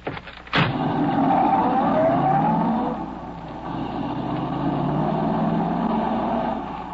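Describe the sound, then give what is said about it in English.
A car door-like thump at the start, then a getaway car's engine revs up and accelerates away, its pitch rising and falling through gear changes as it drives off, loud throughout. “Is that the car there?”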